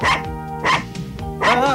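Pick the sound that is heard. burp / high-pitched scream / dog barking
dog barking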